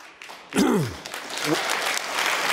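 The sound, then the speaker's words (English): A crowd breaks into steady, loud applause that continues to the end, with a falling whoop of a cheer near the start and a brief voiced shout partway through. “Well, hold your applause, because getting shots is getting harder, not easier, for many of us right now.”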